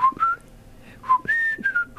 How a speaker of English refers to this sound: Only because you look like you really had to put a lot of effort into doing that whistle.